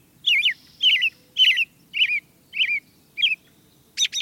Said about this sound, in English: An American robin belts out its spring song from the top of a tree.